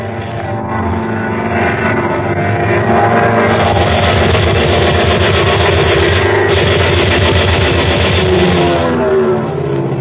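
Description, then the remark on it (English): A propeller airplane circles the field and approaches a target again, its engine droning loud and steady, a rough low hum with a throbbing edge that swells slightly in the middle before easing off. No voices are heard. “The plane circled the field, once again approached the target.”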